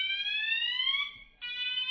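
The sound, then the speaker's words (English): A loud, piercing fire alarm blares in a steady electronic tone that rises slightly in pitch, cuts out briefly, then sounds again. No one speaks. “And it's not a drill.”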